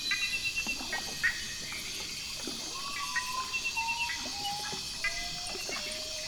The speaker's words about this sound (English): That was a common potu, a nocturnal rainforest bird with a haunting descending song.